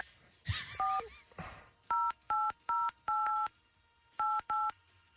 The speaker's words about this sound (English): Okay, here we go. Sorry, everyone. Wow, I dialed slowly.